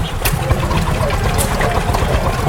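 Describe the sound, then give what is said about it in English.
A loud old threshing machine engine chugs steadily, its low rhythmic thumping mixed with rattling mechanical clatter and occasional sharp hissy bursts, with no voices. “Threshing machine.”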